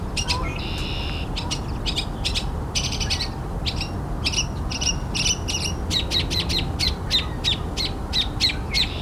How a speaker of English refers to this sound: Mockingbirds pretend to be a lot of different birds. Barn swallow, cardinal, all kinds of other birds.